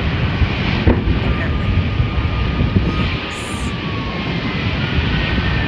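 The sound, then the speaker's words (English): A propane fire roars loudly and continuously, a dense, steady rushing noise that fills the whole clip without pause, sounding powerful. “When it's propane on fire, it absolutely does that.”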